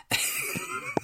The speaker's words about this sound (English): Because that explosive cough is something to behold